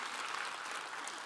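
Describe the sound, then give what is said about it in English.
An audience claps for the 600 kids who came to Easter Sunday kids' programming, a steady, dense, even wash of many hands with no pauses and no voices on top, fairly soft throughout. “You know, that's pretty incredible. We had, you can clap for that.”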